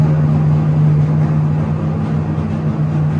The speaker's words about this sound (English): This is the Engine Performance Expo LS. I think that was about 9,100 RPM or something. Yeah, I was about to say, that's 20 pounds of boost at 9,000 something RPM